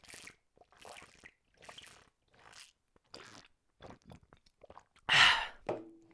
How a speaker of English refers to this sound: hold on one second, I gotta drink water.